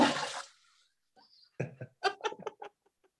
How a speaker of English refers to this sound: Oh, we heard it. I caught a little bit of that flush there.